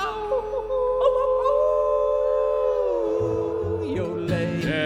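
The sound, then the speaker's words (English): In a cowboy song, a person lets out a long, loud, sustained howl that holds steady and then slides downward, imitating a wolf howling at the moon, with instrumental music continuing underneath. “We're gonna hoot and holler and howl at the moon.”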